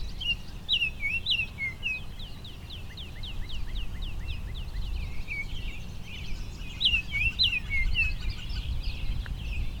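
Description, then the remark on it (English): A northern flicker calls in a long run of quick, bright, high notes repeated steadily for the whole stretch, with other birdsong mixed in over a low, steady rumble. “a northern flicker behind me, also competing here.”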